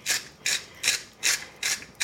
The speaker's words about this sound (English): Then salt it a little bit. It says generously. I'm gonna use a coarse sea salt I happen to prefer. Just grind it in there.